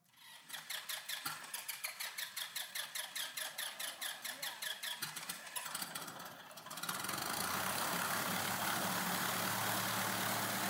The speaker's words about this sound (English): I'm gonna put a sound of a plane.